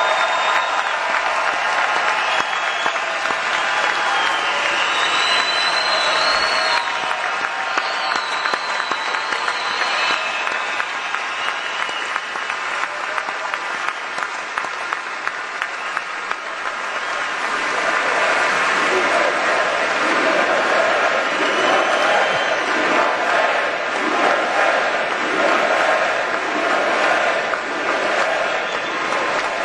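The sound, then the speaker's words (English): A huge record crowd at a political rally applauds and cheers loudly and continuously, a dense wall of clapping and shouts that swells again partway through, with voices blending into the roar. “And this is your record crowd, you know, all-time record crowd.”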